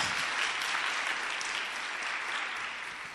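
A crowd claps their hands for Jesus together in a steady, dense wash of applause that stays loud for a few seconds and then gently tapers off.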